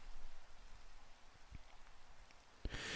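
Steady rain falls as a soft, continuous hiss with scattered drops pattering, and a sharper splash near the end as the rain briefly grows louder. No one speaks.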